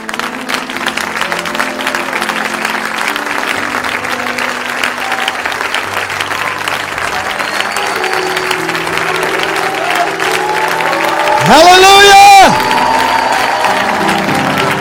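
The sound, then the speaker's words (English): A large audience applauds Jesus steadily and enthusiastically, a dense, continuous wash of clapping with scattered shouts, swelling near the end as a rising cheer or whistle cuts through. “I wasn't there at the Gettysburg Address, but I'm told when Abraham Lincoln come to the podium and give his Gettysburg Address that they applauded him for 5 minutes straight, and we can't give Jesus 10 seconds.”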